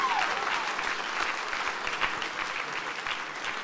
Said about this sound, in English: Okay, how about giving them a great clap?